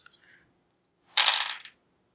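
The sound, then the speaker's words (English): Dice clatter across a hard tabletop: a quick rattle, a faint tick, then a louder, sustained tumbling roll that settles after about half a second. Bright, with no voices. “So that's +3 dice.”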